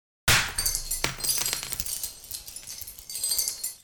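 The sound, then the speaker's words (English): Glass shatters with a sudden loud burst, followed by several seconds of bright tinkling as shards rain down onto the street and scatter, with a few fresh crashes near the end. “As shards of glass rain onto the street, the two superheroes hide in the archway of an old church.”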